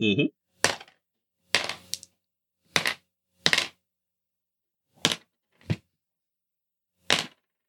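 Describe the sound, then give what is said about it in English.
Six dice are rolled for a stunt in a game, clattering onto a hard surface in a scattered series of sharp clacks and knocks, about eight hits spaced irregularly over several seconds, fairly crisp, after a brief voice fragment at the start. “So roll your power level plus 1 for the stunt and your might. All right, that is 6 dice, and any that come up 4 through 6 are successes.”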